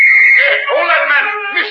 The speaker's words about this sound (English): When the gendarme finally released me and I reached the other side of the street, another whistle blew.